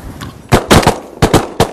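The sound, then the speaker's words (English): A quick volley of loud, sharp shotgun blasts, about six booming cracks in uneven pairs, each ending abruptly, over a low rumble of wind with no talking, fired while hunting Eurasian wigeons and teals on an ocean bay in strong wind. “Normally shooting the size ducks like the Eurasian Wisions and teals that we're shooting at today, I would probably choose to shoot like a number four steel.”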